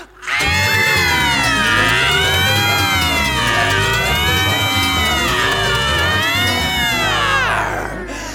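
A group of children scream together in a loud, sustained, wavering chorus of overlapping high voices that holds for about seven seconds before cutting off.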